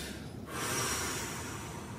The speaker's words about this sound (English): And she had this person breathe. She said, "I want to hear you breathing out loud. I want you to exhale longer."